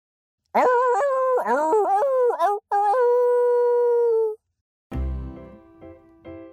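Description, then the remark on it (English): A person's voice imitates a wolf howl, the 'superpower level up howl', with a few rising, wavering yips that lead into one long, loud, sustained howl. After a brief pause, a short musical sting follows. “Do you want to hear the superpower level up howl?”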